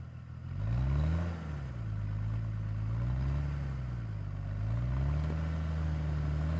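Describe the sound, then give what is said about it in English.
A car engine turns over and settles into a steady running drone, its pitch rising and falling as it revs and pulls away, with no voices. “We said our goodbyes and climbed into the car.”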